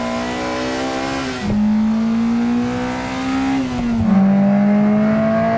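The engines of three Integra cars from different generations rev one after another, ending with the new Integra, each holding a steady, droning pitch that shifts abruptly at every changeover. Loud, with no voices.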